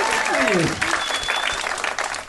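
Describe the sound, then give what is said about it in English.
An audience bursts into steady, dense applause after a happy birthday wish, many hands clapping at once in a loud continuous patter, with a brief descending whistle-like tone sweeping down at the start. “No, you say birthday, people applaud.”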